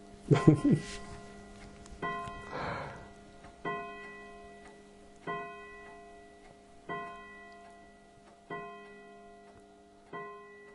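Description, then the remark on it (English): A clock chimes six slow, evenly spaced strikes, each ringing out clearly and decaying before the next. A brief bit of voice is heard near the start. “Well, as you heard from the clock chimes there, we really could not have timed that interview any better.”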